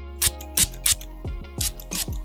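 Several quick spritzes from a cologne spray bottle, about five short hissing bursts at an uneven pace, each with a soft click of the pump. No one speaks.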